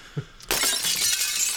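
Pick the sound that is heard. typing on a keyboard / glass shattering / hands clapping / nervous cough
glass shattering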